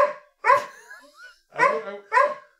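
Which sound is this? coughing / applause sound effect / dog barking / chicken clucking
dog barking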